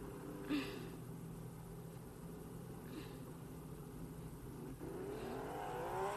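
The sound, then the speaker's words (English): Racing cars' engines drone steadily together at a race start, then rise sharply in pitch toward the end as they accelerate away when the start lights go out. The sound is loud, with no voices. “Lights out, and away we go again.”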